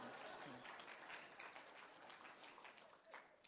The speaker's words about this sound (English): Spontaneous applause is appropriate.